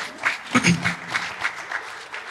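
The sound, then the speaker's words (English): An audience breaks into brief, scattered clapping, moderately loud and uneven in rhythm, with a voice or two briefly audible in the middle before the applause tapers off. “Yeah, that's a good thing to clap about.”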